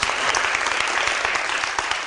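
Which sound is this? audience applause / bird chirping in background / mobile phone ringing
audience applause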